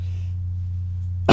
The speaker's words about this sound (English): Just because of all the coughing.